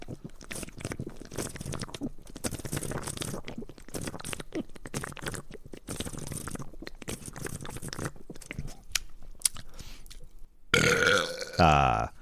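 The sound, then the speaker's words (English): Sipping from a can of Tab soda: wet slurping and swallowing sounds for several seconds, ending in a loud, drawn-out burp. “Let me have a little sip of this tab.”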